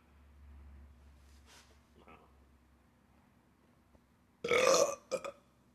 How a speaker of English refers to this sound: That's just nasty. I want to tell you that every fucking time you fucking burp on the podcast, dude, I'm almost horrible.